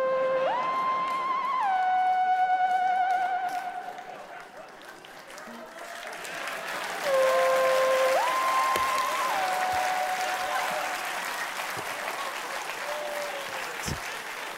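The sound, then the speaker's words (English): A studio audience applauds steadily for about fifteen seconds, a dense wash of clapping, while a wavering electronic musical sting plays over the start and again midway. “No, I meant the camera come closer, not you applaud, but I'll take your pity applause.”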